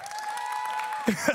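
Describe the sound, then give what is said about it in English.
Movement camp kids cheer and clap in a busy burst, with one long, steady, high-pitched squeal held over the noise before a couple of short shouts cut in at the end. “I got my cheering section up here.”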